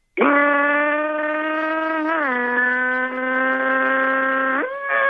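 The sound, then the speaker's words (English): A single voice imitates a rumbling Chevy engine pulling away from a stoplight, a steady, buzzing drone for about five seconds, dipping slightly midway and then stepping up in pitch near the end as the car picks up speed. “Now pick up speed.”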